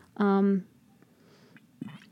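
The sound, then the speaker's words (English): Mouth sounds of someone sipping water: a loud, brief voiced hum near the start, followed by faint wet swallowing and lip noises, then a soft breathy sound. “Another sip of the water.”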